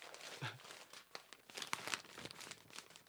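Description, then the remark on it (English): A hand slaps and pats against paper several times in an irregular pattern, trying to imitate the noise of balls hitting paper, making crinkly thuds and rustles with no one speaking. “No, I did my hand, but I was trying to make a ball noise. What do balls sound like when they hit paper?”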